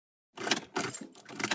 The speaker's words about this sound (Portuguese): Ué? O carro não tá ligando, Juninho? Deve ser problema na bateria isso daí.